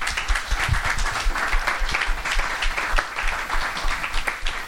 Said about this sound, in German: Ja, danke erstmal, dass ihr alle den weiten Weg oder vielleicht auch um die Ecke hier hingekommen seid. Wir freuen uns sehr. Also ein Applaus für euch bitte kurz.